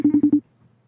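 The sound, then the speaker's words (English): A phone's ringing tone: four quick, evenly spaced electronic beeps at a steady, low-mid pitch, fairly loud, then near silence with no voices. “He's ringing. Ringing.”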